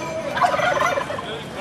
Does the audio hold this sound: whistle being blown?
no